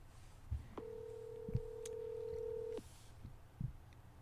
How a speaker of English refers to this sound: Oh, answer that. Put him on speaker. Tell him he's on the podcast. Yep. Oh, he hung up. Call him back. Call him back.